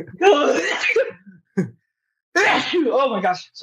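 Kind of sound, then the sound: human body sound, sneeze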